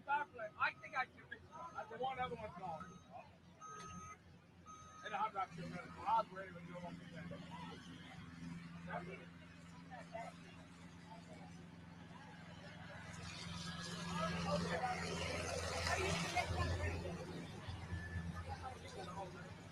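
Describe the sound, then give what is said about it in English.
A blower truck's large engine turns over, started from outside the truck by a person running the starter, and settles into a low, steady rumble, then revs up into a loud roaring surge before easing back. Muffled crowd chatter is audible early on. “Takes a minute to get these blower trucks cranked up.”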